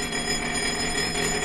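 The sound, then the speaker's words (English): A bell rings loudly and without pause, ending a lecture: a steady, bright metallic clatter that fills the whole moment with no voices. “Yes, I repeat, and therefore it is interesting to note that all you lucky people are once again saved by the bell.”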